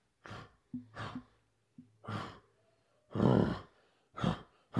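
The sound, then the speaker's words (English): A bear sniffing and huffing around outside a tent in the morning: six loud, breathy bursts of air in an uneven rhythm, a few carrying a low, throaty grunting tone, with no talking. “And sure enough, it's a bear sniffing around outside.”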